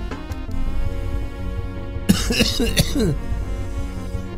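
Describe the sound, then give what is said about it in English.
A short, rough fit of coughing bursts out midway, two or three harsh hacks from a person with bronchitis, over a steady, humming tonal background that runs throughout. “Again, I apologize for the coughing. I have fucking bronchitis.”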